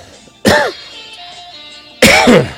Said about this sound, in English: A cough.